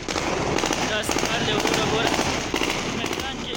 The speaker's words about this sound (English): Gunfire streaked the skies over Kabul airport as the Taliban celebrated the last U.S. troops leaving, giving them full control of the city and Afghanistan.